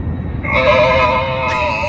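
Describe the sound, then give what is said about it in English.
A loud, grating electronic drone blares from an airplane's public address system during a malfunction, a harsh buzzing tone that holds steady for over a second above a low rumbling cabin background. “We realize there's an extremely irritating sound coming over the public announcement.”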